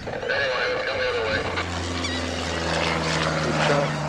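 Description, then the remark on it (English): A small Cessna propeller plane drones overhead along a Jersey beach shore, with volunteers inside estimating how many birds take flight, its steady, loud engine hum settling into an even tone after a brief, rougher start. No one speaks. “Some crouch behind sand dunes, others watch their feathered targets from the cockpit of a Cessna. Here comes the plane,”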